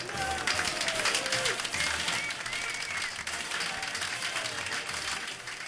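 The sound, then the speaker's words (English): A crowd cheers and applauds steadily, dense clapping forming a broad noisy wash with a few higher whoops and shouts rising above it, sustained at an even loud level throughout. “There's the crowd again.”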